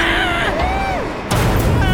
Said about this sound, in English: What the cack was that? Serena, were those explosions I heard? Damn it, I think so.